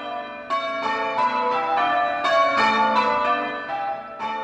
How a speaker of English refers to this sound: Then pealed the bells more loud and deep.